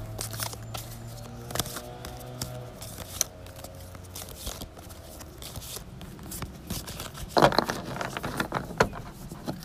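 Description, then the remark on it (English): A deck of tarot cards being shuffled, with steady papery slaps and soft riffling clicks in an uneven rhythm, a louder flurry near the end, and no one speaking over it. “So I'm just going to shuffle my cards.”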